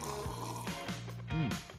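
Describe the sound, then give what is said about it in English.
Someone sips blueberry kombucha from a cup in a few short, slurping pulls, with wet airy bursts and a low gurgling hum underneath, moderately loud and with no talking. “Hold on, I'm sipping on one right now.”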